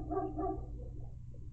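Two quick dog barks ring out at the start, followed by softer whimpering yips over a steady low hum, with no one speaking.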